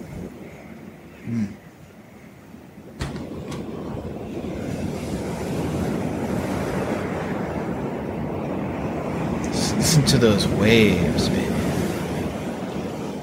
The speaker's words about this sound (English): Listen to those waves, baby. Just everyone relax and listen to the waves, baby. Everyone just listen to the waves. Become the waves.